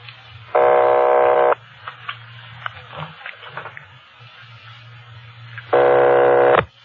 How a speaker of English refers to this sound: Keep ringing, 761. They're ringing the number, Sergeant.